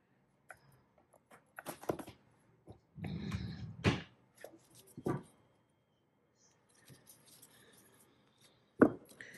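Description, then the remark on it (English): Tarot cards being shuffled: irregular papery taps and clicks, a denser riffling burst partway through, a quiet pause, then a sharp snap of cards near the end. No one speaks. “I have not tried to shuffle this with my small hands, but we're gonna try.”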